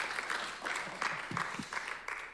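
A crowd applauds with steady, dense clapping that holds at an even level throughout, a continuous patter of many hands with a few louder claps popping out.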